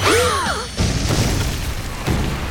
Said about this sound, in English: Before long, however, a bit of loud noises started to come from the oven. Huh? The noises became more pronounced. The oven door burst open, and a rapidly enlarging cake shot out of the oven.